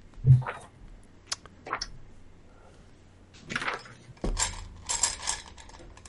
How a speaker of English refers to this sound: Don't like the sound of you grabbing dice.